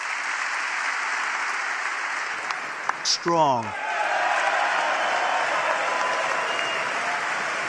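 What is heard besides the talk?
applause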